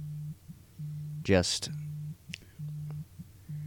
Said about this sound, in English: My phone's ringing. Uh-oh.